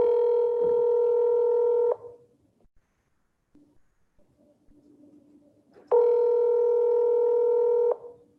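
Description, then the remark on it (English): A phone line rings out on an outgoing call recorded on December 8th at 3:43 p.m.: two steady, two-second ringback tones separated by a roughly four-second pause filled with faint line hiss, with no one speaking. “So here goes the phone call.”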